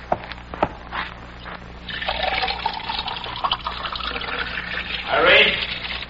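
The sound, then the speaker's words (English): A faucet runs, pouring water into a glass for a few seconds, the hollow splashing tone rising steadily as the glass fills, after a couple of faint clicks. “I'll get him a glass of water.”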